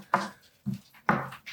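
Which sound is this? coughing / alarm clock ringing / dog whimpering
dog whimpering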